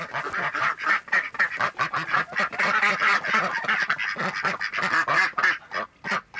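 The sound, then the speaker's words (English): A flock of ducks on a farm of about 16 acres quacks continuously and loudly, overlapping calls forming a dense, raucous chorus with no pauses and no talking. “They've got guineas, quail, chickens, and ducks.”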